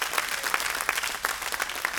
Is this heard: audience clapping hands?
yes